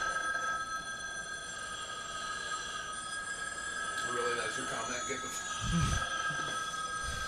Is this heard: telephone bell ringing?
yes